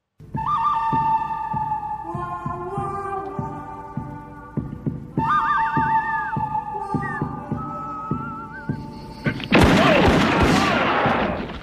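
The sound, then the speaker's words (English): A western-style theme plays loudly, a whistled melody gliding over sustained tones and a steady thumping beat, before a sudden harsh burst of noise like gunfire near the end. “I thought there was another whistling voice to go then.”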